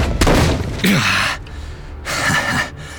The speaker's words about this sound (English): Loki then grabbed him by the head, slamming his face down onto the nearest table.